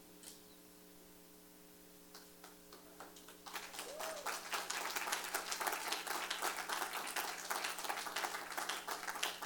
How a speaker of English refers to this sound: This time the clap came from the parents.